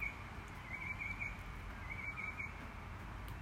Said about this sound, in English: God, listen to those birds.